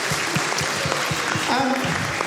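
An audience applauds with steady, dense clapping that fills the whole moment, fairly loud and close, with a faint voice briefly rising through the clapping partway through.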